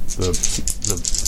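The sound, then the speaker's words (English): Dice rattle and clatter in a quick, busy burst of small clicks during a tabletop role-playing game, a roll with a bonus die that lands a 3 and a 1, while a voice speaks over the top in short bits. “Well, at least it's not a fail because I got my bonus dice.”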